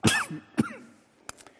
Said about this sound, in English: I haven't coughed in 2 weeks. I'm going to throw a cough drop in